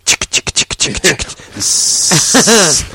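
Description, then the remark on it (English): A voice mimics a spray paint can: a quick run of clicking, rattling mouth sounds, then a long, steady hiss with some voiced vocalizing mixed into its second half. “Who the fuck would pay you to spray paint their garage?”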